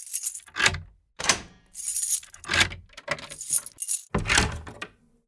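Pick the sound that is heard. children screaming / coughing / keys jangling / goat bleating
keys jangling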